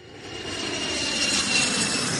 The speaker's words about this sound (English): Yeah. That's a 747 jet right there.